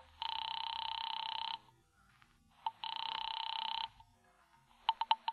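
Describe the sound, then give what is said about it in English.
A telephone line rings twice on a call to a bookie joint, each long electronic buzz-like burst steady and clear with a pause between, followed by a few quick clicks as if the receiver is picked up. No one speaks. “I picked up the phone to call a bookie joint run by a guy named Joey Gore.”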